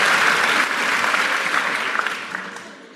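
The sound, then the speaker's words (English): An audience claps steadily, a dense wash of many hands at moderate loudness that gradually tapers off over a few seconds, with no voices standing out. “Don't clap yet.”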